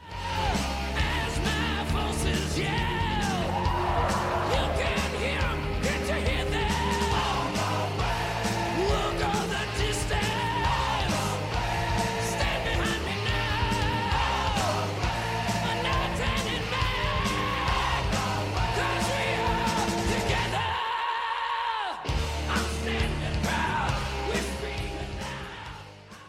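A loud 1985 heavy metal song recording plays throughout, dense and driving with shouted, wailing vocals; near the end the bass and drums cut out for a moment before the full band crashes back in.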